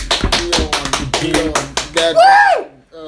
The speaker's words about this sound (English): The point of the fact of the matter is we gotta clap it up for ourselves, man. We on iTunes finally.